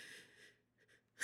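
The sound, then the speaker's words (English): A sudden, loud, explosive burst of breath erupts after a near-silent stretch, the sharp sneeze breaking off abruptly at the very end. “Bless you.”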